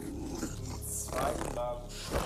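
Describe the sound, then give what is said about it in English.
A person makes a rough, throaty growling noise with their voice, imitating a rat growling in a few short, gravelly bursts, moderately loud. “Also, the rat growls.”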